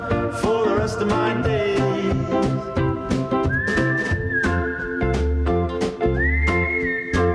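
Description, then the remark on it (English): Someone whistles a tune over busy instrumental music with a steady drumbeat, the clear whistled notes gliding upward and standing out above the mix in the second half. “I told him to stop whistling.”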